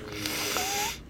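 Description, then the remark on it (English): A single drawn-out nasal sniffle, airy and hissing for about a second, with a thin whistling tone near the end as air rushes through the nose. “We're gonna have to listen to you fucking sniffle through this whole podcast.”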